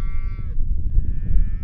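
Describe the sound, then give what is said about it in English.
Heifers mooing while out grazing for the summer in a pasture on the high alpine hillsides of a ranch in Daniel, Wyoming, two drawn-out, harmonic lowing calls with a short pause between them, over a steady low rumble of outdoor background noise. “These heifers are out grazing for the summer here in this pasture.”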